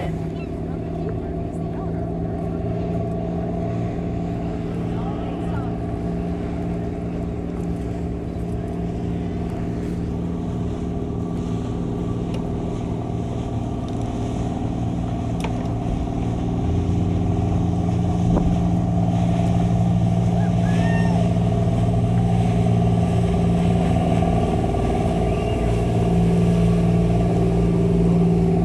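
Heavy lobster boat engines drone steadily on trap day at an island harbor, a deep, layered rumble that swells louder about two-thirds through as another boat throttles up heading out of the harbor, boats heading both south and north.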